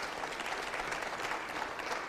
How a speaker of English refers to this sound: Now clap your hand. Let's thank the Lord for that.